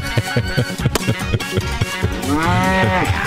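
A thumping rhythmic beat plays, then a single long, loud cow moo swells in near the end and bends downward as the beat continues beneath it.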